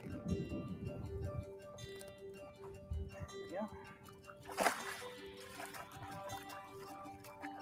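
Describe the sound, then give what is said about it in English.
A single short splash as a caught fish is released back into the water, set against constant blustery, relentless wind rumble and faint background noise. “Let's get her back in the water and see if we can't find another one.”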